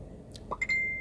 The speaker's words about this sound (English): Oh, there we go again. Notification.